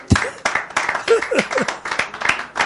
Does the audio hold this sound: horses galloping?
no